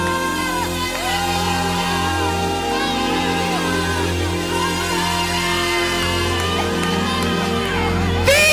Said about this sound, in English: Shouts of victory!